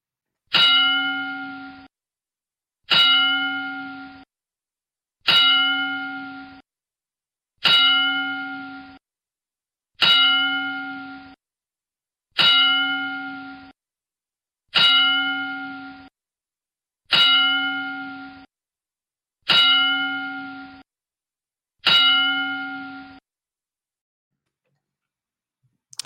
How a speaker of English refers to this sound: we're going to take a moment and do a 10-bell salute for Pat